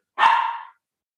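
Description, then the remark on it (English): A single loud, sharp bark from a female dog, lasting about half a second before silence. No one speaks during it. “See, the dog agrees. She agrees that that's a great idea.”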